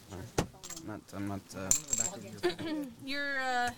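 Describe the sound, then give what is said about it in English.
Poker chips clack together in a few sharp, bright bursts as they're shuffled during a poker game, with people talking and laughing over the clicking. “You're shuffling”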